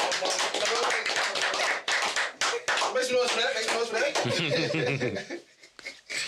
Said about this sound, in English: But yeah, clap it up for Candy. That's it.